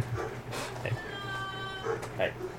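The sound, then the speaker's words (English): A 10-month-old female giant mountain dog puppy in a living room whines in a drawn-out, high tone, with short yelps and grunts around it. The sounds are fairly quiet, and indistinct voices murmur underneath. “If you don't know, there is a giant mountain dog in the living room.”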